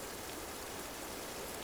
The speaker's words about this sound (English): So allow the sound of the rain to calm and soothe you. Thank the rain for cooling, nourishing, and cleansing you. Now let's focus more closely on the raindrops.